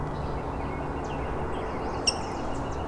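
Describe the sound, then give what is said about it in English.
A female rose-breasted grosbeak gives one short, sharp, high squeak over a steady low rumble, with a few faint thin chirps before and after it. “There's another one, a female. She's squeaking.”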